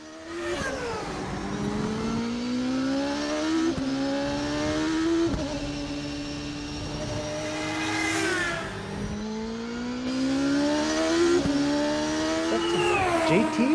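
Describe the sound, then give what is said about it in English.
A loud IndyCar racing engine screams as it accelerates, its pitch climbing and dropping sharply with each of several quick upshifts, with no talking. “Well, that is an Indy car.”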